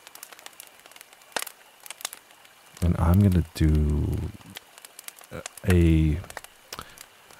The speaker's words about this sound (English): I came across this fire and creek sound and I am in love with it.